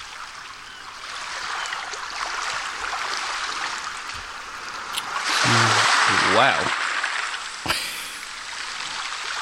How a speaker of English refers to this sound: Alexa, ask Meditation Timer for 10 minutes of surf. Starting 10 minutes of surf sounds. Here we go.